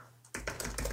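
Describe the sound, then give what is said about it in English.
Rapid clicking of keys on a computer keyboard, fairly loud, starting after a brief quiet moment and continuing in an uneven burst of keystrokes with no talking. “I'm typing a thing. Sorry. I can't really type and speak at the same time.”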